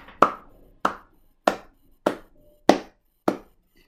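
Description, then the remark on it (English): Slow, deliberate clapping by Falcone: six sharp, crisp claps spaced evenly about half a second apart, each ringing briefly before the next, with no voices. “Clapping.”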